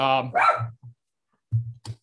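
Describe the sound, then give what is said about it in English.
A dog barks in two short bursts: a couple of sharp, harmonic barks with low gruff follow-ups, a brief pause, then two more quick barks, moderately loud with no talking. “Sorry, my dog's not wild.”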